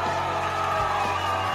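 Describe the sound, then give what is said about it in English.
A live audience at a show cheering, a dense and steady wash of crowd noise with scattered whoops, holding at a fairly loud, even level for the whole short stretch. “Nice crowd.”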